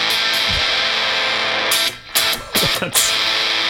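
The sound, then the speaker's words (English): A heavily distorted electric guitar rings out with a harsh, buzzy sustained tone. About halfway through it breaks into a few choppy, stuttering bursts. It plays loud and alone, with no talking. “And then if you, I guess, put some distortion on it.”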